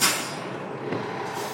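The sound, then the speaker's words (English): A 15L city bus in Aurora rumbles along past trailer parks, townhomes and taquerias with a steady engine and road drone, opening with a brief sharp hiss like air brakes releasing. No one speaks. “stares out the window as the 15L bus passes trailer parks, townhomes, and taquerias.”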